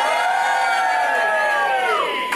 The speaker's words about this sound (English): So I'm here at the Cavendish Arms in Stockwell, in London. Can I have a cheer from the audience?